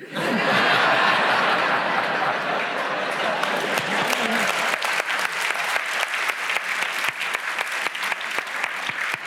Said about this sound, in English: I think the applause suggests that he wins the prize.